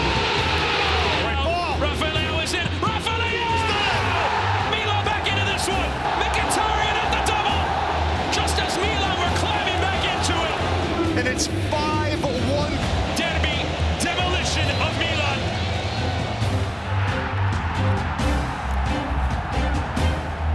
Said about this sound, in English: Listen to San Siro roar.